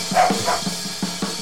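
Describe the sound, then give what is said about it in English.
Big Truck's dogs bark in quick, irregular bursts, about four or five sharp barks over a steady low hum. Moderately loud, with no voices. “Come get your dogs right now, Big Truck.”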